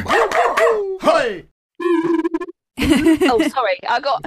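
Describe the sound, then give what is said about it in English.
A voice makes a warbling, old-style science-fiction countdown noise, rising and falling in pitch across three loud bursts with a short buzzy, pulsing stretch in the middle. “That was a weird noise came out then. It was like a science fiction type, old style Doctor Who type noise.”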